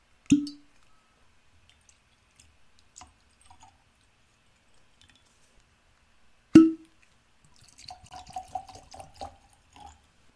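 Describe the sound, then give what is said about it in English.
Two high-proof whiskeys, one a Colorado bourbon, are poured into glasses in short gurgling glugs near the end, after two sharp knocks of glassware being set down. Fairly quiet, with no talking. “Let's get these poured and jump right in.”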